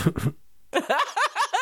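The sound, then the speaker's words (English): Two quick, harsh coughs burst out after a bong hit, then after a short pause come several strained, rhythmic voiced gasps, as if someone is still recovering from a hard coughing fit. “That whole thing was milky before I pulled that carb. Made me cough hard.”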